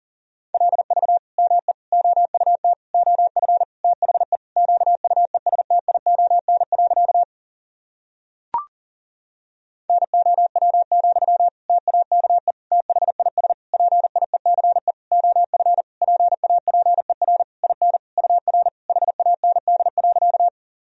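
Fast Morse code beeps at 40 words per minute, sending sentences built from the top 400 words and abbreviations, in a single steady mid-pitched tone keyed in rapid dots and dashes across two long runs, split by a short pause with a brief click between them.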